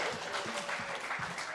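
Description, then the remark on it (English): A crowd claps steadily for a moment, a dense, even patter of many hands at a moderate level, with faint low murmurs underneath. “Give this bitch a round of applause.”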